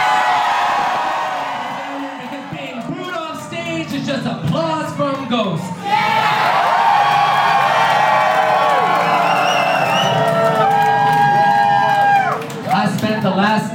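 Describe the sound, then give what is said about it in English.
An audience cheers loudly and continuously for a performer, with whoops, screams and shouting voices layered together, swelling in intensity after a brief dip partway through. “Hearing you cheer for me knows that you are cheering for yourself, because RuPaul didn't give me that fucking crown.”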